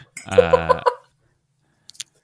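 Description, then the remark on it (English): Someone clears their throat once, a voiced, gravelly rasp lasting under a second. Silence follows, then two faint, quick clicks. “So I just need to clear my throat.”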